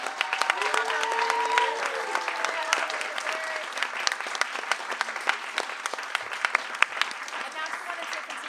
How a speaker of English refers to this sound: Can we clap for original flyers?